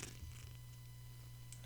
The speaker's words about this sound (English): The cat is purring into the microphone. I can hear it.